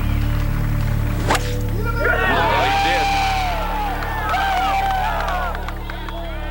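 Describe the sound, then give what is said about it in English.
A single sharp crack is followed by a golf crowd at the 18th, the 72nd hole, erupting into sustained cheering and applause for John Daly, with rising whoops and whistles over a steady roar of voices that lasts to the end. “There was a huge just outpouring of noise and cheering, and Daly was just soaking it all up.”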